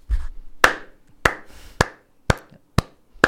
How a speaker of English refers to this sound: I think this is the first time I clap on my show.